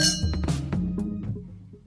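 Wine glasses clink together in a toast several times in quick succession, each light tap leaving a bright, high ringing tone that lingers and slowly fades, with no talking.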